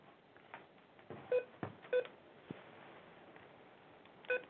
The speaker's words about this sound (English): Let me fix this. My beeping McBeepington. All right, we should be good. It'll beep in like 8 seconds. Watch.